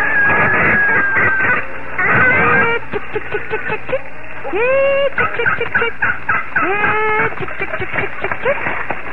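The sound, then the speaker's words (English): A flock of chickens on a farm clucking and squawking, their overlapping calls rising in quick bursts over a steady barnyard background. “Oh, I'd go on with the chores around the farm, feed the chickens and tend the garden day after day.”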